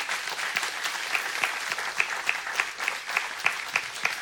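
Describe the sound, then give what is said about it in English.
An audience claps steadily for the speakers at the close of a service, a dense patter of many hands with sharper individual claps popping through at a fairly even loudness throughout, and no voices. “What we want to say is thanks for the joy of talking about joy to these fine Ories to my right, and want to just give them a round of applause as we close this time together.”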